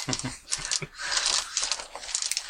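Dice rattle and clatter across a hard tabletop, a burst of sharp clicks followed by a sustained rolling rattle and a few final taps as they settle.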